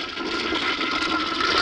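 A toilet flushes with a loud, steady rush of churning water that carries on unbroken for the whole short stretch, with no voices over it.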